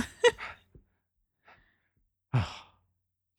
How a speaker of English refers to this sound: That sounded like something else, didn't it? Yeah, it did. He's sitting in his ass just panting into the microphone.